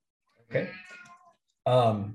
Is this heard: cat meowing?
yes